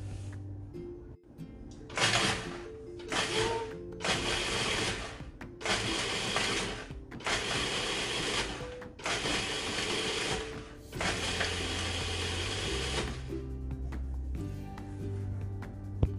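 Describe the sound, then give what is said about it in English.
A food processor pulses cookies into crumbs in loud motorized bursts, about seven pulses with short gaps, the bursts getting longer toward the end, followed by a lower mechanical hum as it runs while about 6 tablespoons of butter are poured in. No one speaks. “Now with the food processor on, I'm going to pour in let's start with 6 tablespoons of butter and see if I need to add 2 more.”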